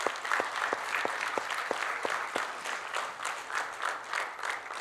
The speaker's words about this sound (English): I want to say thank you to all of our fathers. Can we just give our dads a round of applause this morning?